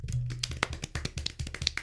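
A quick run of sharp, knocking taps as a hand hits a hollow metal microphone stand, about a dozen irregular hits with a low thud beneath each, one of them ringing slightly longer.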